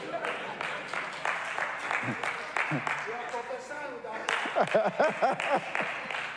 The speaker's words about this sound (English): What are you clapping about?